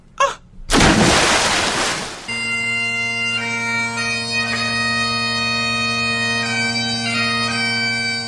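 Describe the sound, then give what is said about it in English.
A heavy, noisy splash of a man diving headfirst into his family's backyard river, lasting about a second and a half, then giving way to a steady, held musical tone that rings on to the end. “he dove headfirst into his family's backyard river, only to drown immediately upon entry.”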